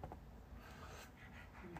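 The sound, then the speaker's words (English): A dog pants quietly, a soft, breathy huffing repeated in quick uneven bursts against a low background rumble, with no voices. “Are you thirsty? Cause you over here panting, dude.”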